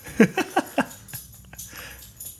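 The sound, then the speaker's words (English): A dog scratches at her collar, four quick rhythmic rattling bursts, followed by fainter scattered scraping and jingling. “How is that dog scratching her collar so loud?”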